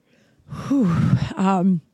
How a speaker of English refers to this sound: I need to yawn.